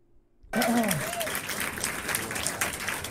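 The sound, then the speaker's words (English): Applause from a concert audience in a played video starts suddenly after a brief silence and keeps going as a steady, dense wash of clapping, with a short voice-like call rising over it at the start. “Get sizable applause there.”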